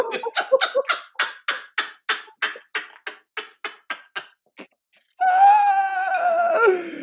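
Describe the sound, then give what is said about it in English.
A person lets out a rapid run of about a dozen breathy, groaning vocal bursts, falls briefly silent, then breaks into a loud, sustained wavering scream. “My God, I didn't even know that I could, like, scream.”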